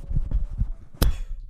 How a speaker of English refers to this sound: Did he drop it or slap it? He threw that down. Slapped it and threw it in the floor.